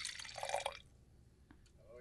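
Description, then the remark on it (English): Wine pours briefly into a glass, a gurgling splash lasting under a second before it stops, followed by a quiet stretch with a couple of faint small sounds. “That was a very civilized and relaxed sounding pour of the farm.”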